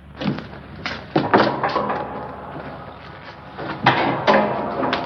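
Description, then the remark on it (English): A door with a folding bed behind it is opened with a series of wooden clunks and thuds, several sharp knocks spread unevenly over a few seconds, with faint room noise between them. “The old crow downstairs said there's a folding bed behind this door.”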